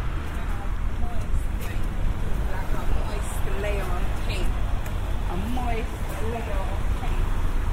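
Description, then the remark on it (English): A motorbike engine drones steadily amid the continuous roar of busy road traffic, loud throughout, with a person talking over the noise. “There's an insistent motorbike sound.”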